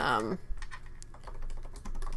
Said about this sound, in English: Just typing.